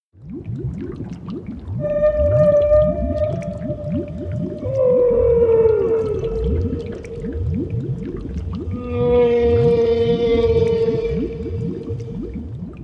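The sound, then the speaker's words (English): A woman's voice imitates a whale call with long, drawn-out moaning tones that slowly bend in pitch, layered over a steady low pulsing rumble, continuing for about thirteen seconds with no talking. “She can make incredible amounts of sounds, and I want to challenge her again today. I wonder if she can do a whale.”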